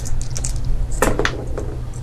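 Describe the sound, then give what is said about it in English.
Dice are rolled in a flat roll, clattering across a tabletop in a quick cluster of sharp, bright clicks and rattles, preceded by a few lighter taps, over a steady low hum with no talking. “So, yeah, I'll start with their dice. Okay. This is a flat roll.”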